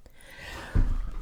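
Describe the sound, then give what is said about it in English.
A single sneeze: a brief breathy intake builds into one sharp, forceful burst, with no talking around it. “Bless you. Thank you.”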